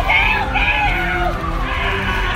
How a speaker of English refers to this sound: Screams of pain and terror echo as police dogs take down two suspected car thieves. One of our crew stumbled on the VPD's canine unit. This takedown happened here on Carolina Street.